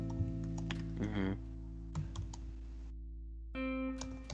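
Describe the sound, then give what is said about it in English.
Quick, uneven computer keyboard clicks tap away, scattered in short bursts over a steady low electrical hum, with a brief pause before a final flurry of keystrokes. “I can hear the typing.”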